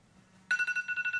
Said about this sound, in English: Is your phone going off too? No, I just silenced it.